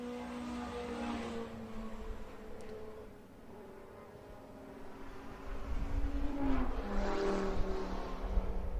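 Several racing engines whine during an SCCA race at Buttonwillow racetrack on 6 September 2020, their high buzzing pitches sweeping up and down as cars pass, with one louder car roaring near the end. No one speaks.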